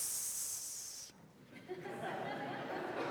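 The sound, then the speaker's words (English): During a sermon, a preacher imitates a snake with a sharp, drawn-out hiss lasting about a second, then the audience breaks into soft murmuring and light laughter. “Because that's how a snake would talk.”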